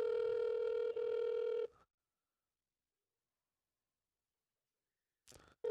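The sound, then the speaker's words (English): An outgoing call rings unanswered: a steady, fairly loud ringback tone sounds for almost two seconds, falls silent for several seconds, then starts again as the next ring begins. “He's not going to pick up this fucking...”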